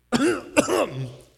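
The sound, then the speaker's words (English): Men make a few awkward, exaggerated fake coughs, two drawn-out throaty 'ahem' sounds and then a sharp, clipped cough at the end, fairly loud with no other talking. “The guys are all coughing.”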